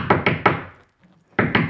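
Two quick bursts of three sharp, solid knocks on a door, close and loud, separated by a brief pause with no voices.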